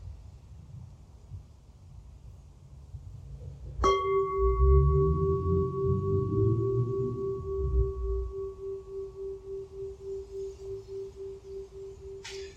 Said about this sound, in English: As I ring a bell to close this sitting, just a curiosity. If you can feel the bell through the body, what happens for you?